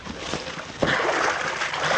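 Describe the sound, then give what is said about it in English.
Water sloshes and splashes as a motor launch is shoved off into the shallows, with a sudden thud of movement followed by steady churning, fairly loud. “Only you shove the launch off while I'm getting in with her.”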